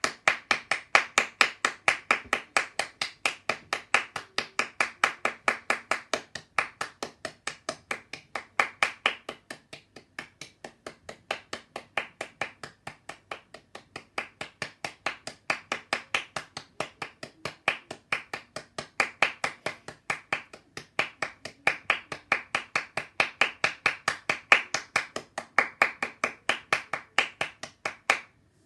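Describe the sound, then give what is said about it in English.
Steady, rhythmic hand clapping continues for about half a minute, sharp evenly spaced claps from one or a few people, with no talking, as hands are clapped in praise during a Christian Aid prayer. “Clap your hands in praise of God's glorious creation and with the hope of new possibilities for the world.”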